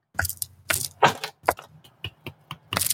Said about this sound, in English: make the sound of one hand clapping and, I can actually clap with one hand.